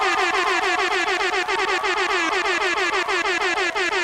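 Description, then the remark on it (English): A loud air horn sound effect blares in a rapid stuttering burst, dozens of quick repeated blasts with a brassy, harmonic tone running continuously for about four seconds, with no talking. “We need more cheering, more rap horn for all you beautiful people.”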